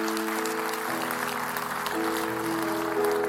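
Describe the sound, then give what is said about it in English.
An audience claps in a steady, dense wash of applause during a sermon, while sustained organ chords hold and shift beneath it for a few seconds. “You can clap about that.”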